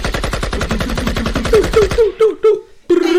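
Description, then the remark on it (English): Rapid automatic fire from an AK rifle rattles off in a fast burst of sharp shots, then slows into a few separate cracks with brief gaps between them, loud. “Let me let the gunshots ring out for a little bit. Let me get the AK.”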